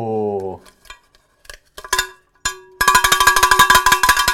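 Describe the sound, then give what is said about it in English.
A cowbell from Junction Bell, with the SDS logo imprinted on its side, clangs in a fast, steady rhythm of bright metallic strikes, preceded by a short vocal exclamation and a few scattered knocks and taps. “Shout out to our friends at Junction Bell who sent me that last year with the SDS logo imprinted on the side of it.”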